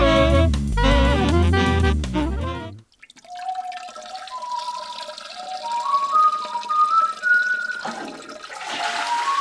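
After a short loud musical burst, water runs steadily from a bathroom tap as someone washes their hands, with gurgling, rising tones and a rushing swell near the end; no one speaks.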